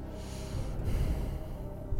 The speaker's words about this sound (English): Intense breathing.